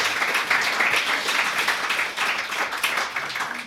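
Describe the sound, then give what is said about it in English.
A concert audience at a Seattle Chamber Music Society Winter Festival event applauds to welcome musician James Ennis, a dense wash of many hands clapping at a sustained, even loudness for several seconds with no talking over it. “Let's welcome James Ennis with a round of applause.”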